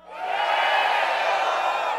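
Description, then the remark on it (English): A crowd of many voices shouts together in one loud, sustained roar lasting about two seconds, rising quickly and holding steady before trailing off slightly at the end. “You ready? Now shout.”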